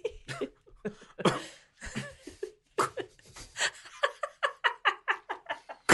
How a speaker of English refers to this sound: It's a few convulsions. Sorry, I was trying to hold in a cough.